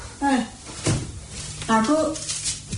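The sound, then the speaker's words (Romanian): A wooden knock and scrape as a suitcase is shoved up onto a wardrobe, with a couple of short thuds while a person talks over it. “Suie-l pe dulap, trântorule.”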